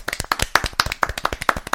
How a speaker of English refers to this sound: So a quick round of applause.